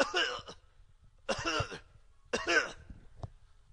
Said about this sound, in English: Mr. President, would you please turn your head and cough?